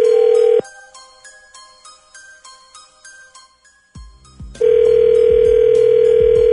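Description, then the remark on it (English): A loud, steady telephone tone on an outgoing call to a woman's boyfriend cuts off into a brief tinkling, chime-like jingle, then the same flat tone returns and holds to the end. No one speaks. “Hang on the line. We'll call your boyfriend when we come back next.”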